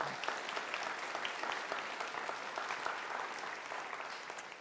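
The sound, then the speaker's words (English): Steady audience applause for a group of people after a prayer, with dense, crackling claps of many hands, holding a constant level for several seconds with no voices standing out. “Can we give these guys some applause?”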